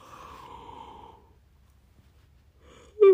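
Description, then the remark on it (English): A drawn-out, voiced yawn that slowly trails off, then a short pause before a sudden loud, abrupt burp at the end. “Excuse me, I'm yawning and burping and spitting into my phone.”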